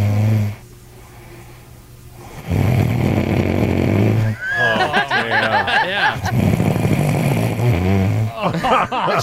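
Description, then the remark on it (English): A sleeping woman snores heavily at 5 a.m. at the Hard Rock Hotel in Las Vegas, each loud, rasping inhale rattling low in the throat, repeating in long rough bursts with short pauses between them. “Yeah, she was sawing logs.”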